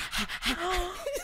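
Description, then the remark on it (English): A child mimics a dog's panting with a few quick, breathy huffs in an uneven rhythm, and a faint high voiced whine slips in between the breaths. “And, like, the first thing you do is just, like, imitate, like, how, the sound that dogs make. And you just go, you don't panting. Panting. She just pants.”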